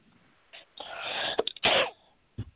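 A loud sneeze bursts out after a brief sharp intake of breath, followed by a quick second gasp and a faint short sound at the end, with no talking.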